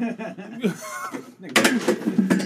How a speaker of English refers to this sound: No, you gotta get the other chair. Damn, he broke a chair.